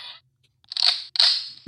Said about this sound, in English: I think there's a gunshot on that. Yeah, I pressed the wrong button.